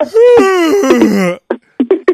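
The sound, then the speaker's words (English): A voice imitates a customer's yawn: a drawn-out, loud, moaning vocal sound lasting over a second, sliding down in pitch, followed by a few short clipped vocal bursts. “And he yawns in between.”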